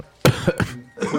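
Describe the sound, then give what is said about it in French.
A few harsh, loud coughs right up close to the microphone, coming in quick bursts with short pauses between them, and no one speaking. “Il faudra peut-être songer à arrêter de tousser dans les micros, s'il vous plaît.”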